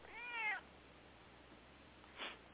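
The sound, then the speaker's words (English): A pet cat gives one clear, drawn-out meow, rising and falling in pitch, followed after a pause by a brief, softer sound over a quiet background hiss. “My cat supports you in that.”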